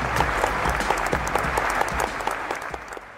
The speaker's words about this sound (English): So warm round of applause for Mr. Jay Acunzo.